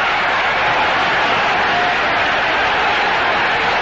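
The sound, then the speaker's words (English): A dense, steady roar of a large baseball crowd cheering at Memorial Stadium in Baltimore during an Orioles game, broad and loud throughout with no pauses, individual voices blurred into a continuous wash of noise. “And now this crowd really begins to get a little more enthusiastic, a little less apprehensive, and begin to let loose some of their great enthusiasm for this wonderful game.”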